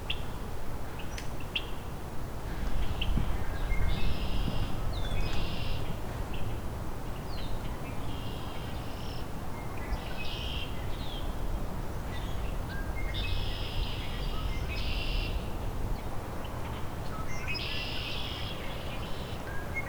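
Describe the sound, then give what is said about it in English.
A red-winged blackbird sings in short, repeated bursts of squeaky, creaking notes over a steady rushing background noise; no one speaks. “And singing now.”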